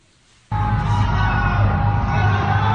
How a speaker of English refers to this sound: The eerie sound of a city in lockdown. Wuhan's residents trapped in their homes, shouting encouragement to each other.